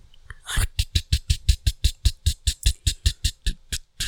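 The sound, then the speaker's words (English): A voice imitates a boat engine that won't start, a steady run of about sixteen loud, sputtering bursts that chug evenly for several seconds without catching. “That's a boat that won't start.”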